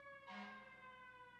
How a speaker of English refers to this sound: Ooh, the first siren.